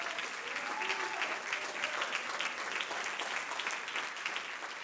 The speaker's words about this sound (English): Clap your hands unto the Lord, all you people.